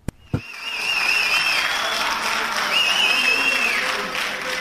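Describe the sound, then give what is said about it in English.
A crowd of supporters cheers and claps steadily for Jacob Zuma, South Africa's former president, as he strides into a Johannesburg conference hall flanked by bodyguards: a dense wash of applause with whoops and voices that holds loud for several seconds after a brief opening thump. “Jacob Zuma strides into a Johannesburg conference hall, flanked by his bodyguards, his supporters cheering him on.”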